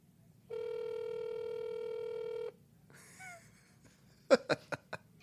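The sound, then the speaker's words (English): A phone's ring tone plays through a speakerphone held close to the microphone in one steady two-second burst. Faint rustling follows, then a quick series of sharp clicks. No one speaks. “Put that shit like close to the mic. Oh, yeah, I can hear it. I hope he answers.”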